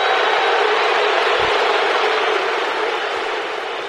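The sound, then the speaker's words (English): A big home crowd at a ballpark roars and applauds in an ovation for Ned after umpire Greg Gibson ejects him, a steady, dense wash of cheering that holds loud throughout and eases off only slightly near the end, on a Sunday in April 2015. “He'll get an ovation from the home crowd.”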